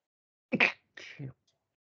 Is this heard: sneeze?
yes